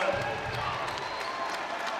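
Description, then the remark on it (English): Cookeville basketball fans applauding in a steady, dense wash of clapping and crowd noise, sustained at an even level throughout with a faint murmur of voices underneath. “Cookeville fans with applause everywhere.”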